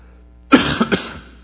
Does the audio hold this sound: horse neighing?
no